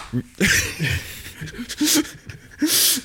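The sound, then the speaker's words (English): A few sharp, breathy sneeze bursts of hissing noise, separated by short voiced sounds and breaths, moderately loud and close together within a few seconds. “Bless you.”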